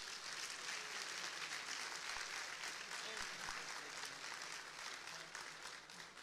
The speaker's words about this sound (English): Let's give our first graders a round of applause.